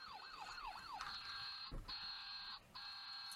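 The electronic siren of a toy fire truck Christmas tree ornament wails in quick rising-and-falling sweeps, then switches to a steady high-pitched electronic tone broken by two brief gaps. It is thin, bright and buzzy, with no voices.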